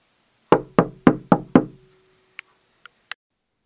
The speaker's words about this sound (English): Not a lot happened at first. Mostly around evening time, there would be a series of knocks at the front door.